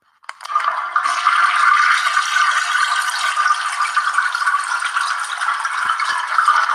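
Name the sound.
toilet flushing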